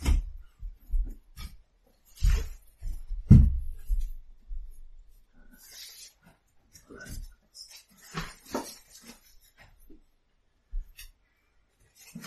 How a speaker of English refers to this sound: Why don't I just get a bit of scrap paper and note it down initially, and then we'll divide it up between us, style of thing?